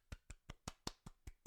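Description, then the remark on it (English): One person clapping by hand eight times as a round of applause in place of a sound effect, in a quick, steady rhythm, each clap a sharp, bright slap of the hands with short gaps between, and no voices. “So that was real life clapping.”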